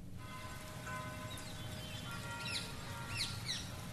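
A single bird sings a series of bright, rising and falling chirps over a steady low rumble of outdoor ambience, with quick repeated notes toward the end.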